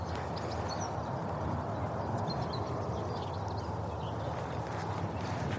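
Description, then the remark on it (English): Steady outdoor spring ambience over a valley on a beautiful day: a constant low rumble of traffic fills the background while scattered high bird chirps and twitters come and go above it. No one speaks. “Mixed in with quite a bit of traffic.”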